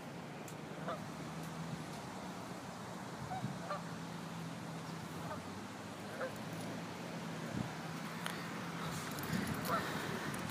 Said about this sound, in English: There's probably about 20 geese setting up here.